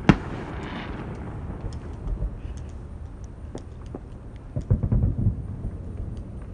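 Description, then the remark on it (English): Distant Independence Day fireworks near a body of water, coming from two different areas, boom and rumble: a sharp bang at the start, scattered muffled thuds, then a cluster of louder bursts near the end over a steady low rumble. “But it's fun to look at the fireworks in the distance.”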